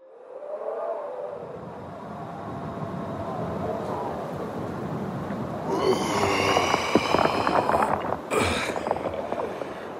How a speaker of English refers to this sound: Oh, what a windy day. I can barely hear myself think.